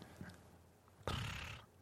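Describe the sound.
A person imitates a horse whinny: a short, breathy, loud burst lasting about half a second after a brief quiet stretch, with no other talk.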